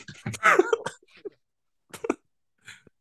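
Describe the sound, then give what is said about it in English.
Someone clears their throat: a loud, raspy burst up front, then a few shorter and quieter throaty rasps spaced out over the next couple of seconds, with no talking. “Clear your thoughts and clear your throat.”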